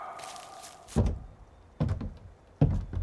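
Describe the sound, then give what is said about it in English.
Police officers with a search warrant work open the unlocked door of a cabin: a faint creak, then three solid clunks spaced roughly a second apart as the latch and heavy door move. No one speaks. “It's unlocked, just like the podcast said.”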